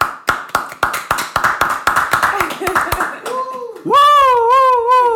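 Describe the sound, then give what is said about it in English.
A quick burst of rapid hand claps, fairly loud, followed by a short high-pitched wavering vocal sound, like a playful squeal or meow-like imitation, at the end. “So first, let's just give some applause.”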